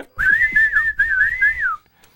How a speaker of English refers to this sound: Because I really like 1942 in the arcade, but that whistling sound on most ports is grating.